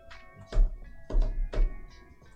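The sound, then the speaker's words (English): Three dull, heavy keystrokes on a keyboard land at an uneven pace, each a low thump with a short click, over a faint steady electrical hum and no talking. “Like, sorry, I had to type in something.”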